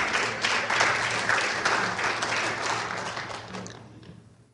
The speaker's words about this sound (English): Who clapped? All right, you can all clap.